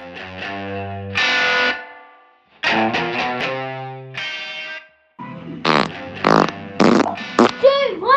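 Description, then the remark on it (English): A run of loud farts from a man in a farting group, some long and droning, others short and sputtering, arriving in three clusters with brief pauses between them and a few squeaky, wavering blasts near the end. “One of the members of Fart Group being judged by his children.”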